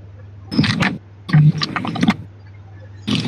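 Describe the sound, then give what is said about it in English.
A fart: a few rough, sputtering bursts with a low buzzy rasp, moderately loud, separated by short pauses over a steady low hum, with no talking. “I just farted.”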